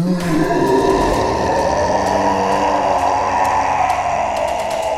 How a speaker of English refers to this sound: And then there's a roar.